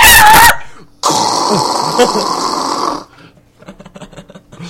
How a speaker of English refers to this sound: This is, yeah, it's me, 12 years old, using dial-up to look at porn in the middle of the night and hoping my mom doesn't hear the modem going.